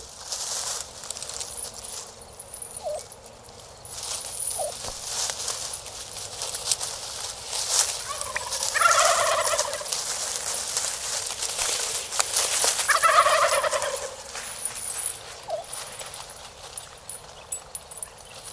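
Two rattling gobbles from wild turkeys, a few seconds apart, over a steady outdoor hiss of wind or insects, with a few faint chirps scattered between them.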